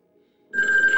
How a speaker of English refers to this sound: What the hell is that thing that's ringing? Her cellular telephone has grown quite loud. It is like large and plugged into the wall. Whatever that object is, it's weird.